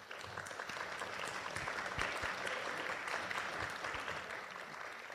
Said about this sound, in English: Thank you. Thank you. Let's give every candidate here another round of applause, folks.